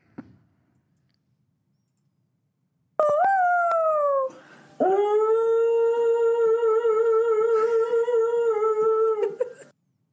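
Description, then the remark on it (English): A dog howls in two long, sustained tonal cries, the first sliding downward and the second holding steady before trailing off, loud, with a faint click at the start; the dog is being filmed by its owner. “I think I found the video of the most soulful dog who's ever lived.”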